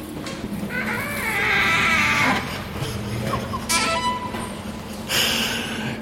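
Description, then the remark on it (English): A squeaking door at the Crawford Art Gallery lets out a long, wavering, high-pitched creak, followed by a couple of shorter squeals, all over a steady low hum with no talking. “Did you put the squeak in the door for Halloween?”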